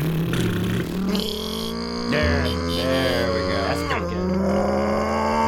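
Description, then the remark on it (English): A person vocally imitates a revving engine, a continuous buzzing, sputtering drone with shifting pitch that rises and falls over several seconds, loud. “That sounded more like a wet motor, almost like a motor boat.”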